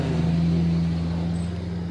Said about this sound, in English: I wouldn't mind bringing those up before we let this loud diesel truck go past us before we answer that.